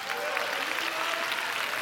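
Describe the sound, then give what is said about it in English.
An audience applauds for the fathers present, a dense, steady wash of many hands clapping at an even loudness throughout, with faint crowd voices mixed into the clapping. “Can we just give it up for all the dads?”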